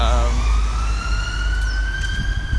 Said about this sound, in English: There's an ambulance just going around the corner.